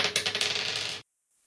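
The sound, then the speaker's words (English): A quick clatter of dice tumbling across a hard surface, about a second of rapid rattling clicks that stop abruptly, followed by near silence. “That's what the dice say.”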